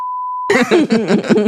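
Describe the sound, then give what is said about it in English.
A steady, pure censor beep sounds for about half a second over a spoken phone number, cutting off abruptly as a person immediately starts talking. “Yeah, I beep that out.”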